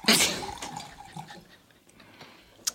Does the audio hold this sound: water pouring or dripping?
yes